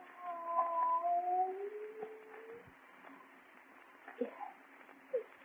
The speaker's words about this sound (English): It is a cat. Not a cat. Look at the size of it. Tiger.